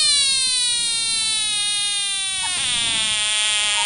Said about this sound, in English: I did not know frogs made these types of fucking noises.